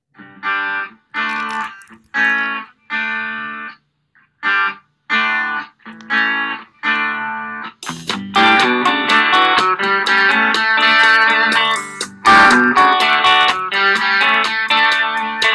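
A rock song plays loudly, opening with choppy, stop-start electric guitar chords before drums and the full band crash in halfway through, driving on with a steady beat.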